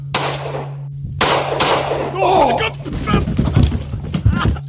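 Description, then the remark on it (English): Two loud gunshots crack out about a second apart, each with a long ringing tail, hitting a man, followed by a high wavering cry and a burst of agitated voices over a steady low hum. “No, no, for fuck, man, you've been shot.”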